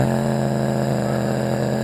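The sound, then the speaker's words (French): A person sings a steady, buzzing drone that seems to hold two pitches at once, sounding much like a car horn. The tone stays loud and unbroken for about two seconds, with no talking. “Ça sonne un peu comme... un klaxon.”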